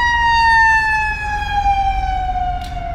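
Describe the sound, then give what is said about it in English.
A loud, steady siren from an emergency vehicle outside wails continuously, its pitch sliding slightly lower as it passes by, over a low traffic rumble with no voices. “let's wait for that siren.”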